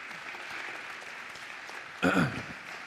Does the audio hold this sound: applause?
yes